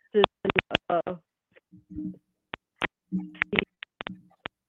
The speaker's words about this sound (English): Yep, I cannot hear you well at all. So I don't understand what is going on. There is some sort of a static going on.